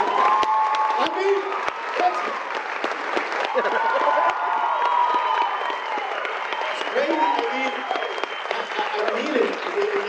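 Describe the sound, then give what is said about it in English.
Loud, sustained applause from an audience for a woman fills the whole stretch, a dense patter of clapping with voices cheering and calling out over it, never fading. “I need another round of applause for this woman.”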